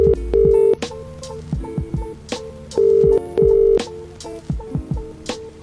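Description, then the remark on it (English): A telephone ringback tone from an outgoing call made on the radio show Pass the Aux, Played Out Radio, buzzes in steady paired bursts, one pair near the start and another midway, over a rhythmic backing beat with thumping drums; no one speaks. “There we go. We're ringing.”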